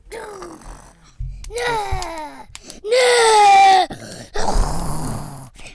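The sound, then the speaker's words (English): A young voice imitates a horse with a series of loud, wavering whinny-like cries, several rising and falling in pitch, the strongest in the middle, followed by a breathy, snorting burst. “And now make a horse noise and...”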